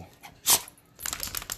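The speaker's own dog whimpers: one sharp, breathy cry, then after a short pause a run of quick, high whining sounds. No one speaks.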